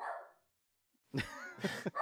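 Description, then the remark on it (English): A pet dog barks a few times in quick, harsh bursts after a brief pause, with a fading tail of sound at the start. “my dog barking in.”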